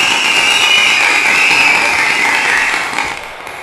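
Loud, dense applause from a wrestling crowd forms a steady hissing roar that holds for about three seconds, then eases off toward the end. No voices stand out.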